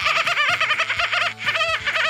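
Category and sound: vocal imitation, voice imitating a dolphin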